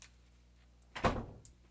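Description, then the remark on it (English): A door at the top of the stairs bumps shut once, a muffled thud with a short rumbling tail, followed by a faint click in otherwise quiet surroundings. “Man, go put your pants on in your room and close that door at the top of the steps, please.”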